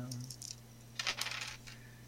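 Dice are rolled for damage in a game, tumbling across a table in a quick burst of bright, rattling clicks, preceded by a few light taps, all over a low steady hum with no voices.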